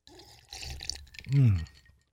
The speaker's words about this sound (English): Let me take a drink of this non-sugar water.